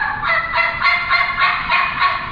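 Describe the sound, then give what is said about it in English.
An imitated wild turkey gobble: a loud, rapid, throaty rattle of pulsing notes that runs steadily for a couple of seconds, with no talking. “He gobbles.”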